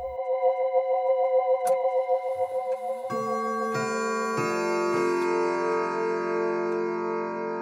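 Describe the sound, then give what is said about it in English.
A grandfather clock ticks in a steady rhythm for a few seconds, then rich chiming tones enter one after another and ring on together, with no voices. “It's a miracle that thing still works and you can barely see the dents.”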